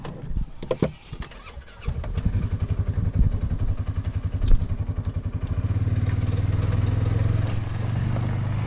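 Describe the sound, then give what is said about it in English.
A very small all-terrain vehicle, a buggy or side-by-side, driving around beaver ponds, starts with a few clanks, then chugs and revs in a steady low rumble that pulses rhythmically before settling into a smooth, continuous drone. “drives us around in a very small all-terrain vehicle.”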